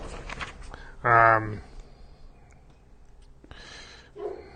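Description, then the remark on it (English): A female puppy in training, just woken from her nap, lets out one short, loud, whiny yelp, surrounded by quiet breathy rustling and soft whisper-like sounds before and after. “we have our little puppy. We're puppy training. She just woke up from her nap, so we got to go take care of some business with her.”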